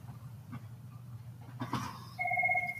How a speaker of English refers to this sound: Sorry, my phone.